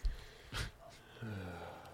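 A single short, breathy cough bursts out near the start, followed by a low voiced murmur; the sound is muffled and fairly faint, as if a little off-mic.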